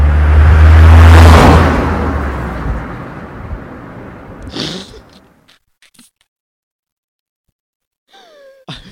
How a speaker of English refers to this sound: Wow, alright. Alright, this one will be a car passing by.